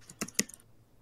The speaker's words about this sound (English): Who's typing? I am. Sorry, I have to type this on my character sheet. No, it's okay. It's a little loud, just to let you know.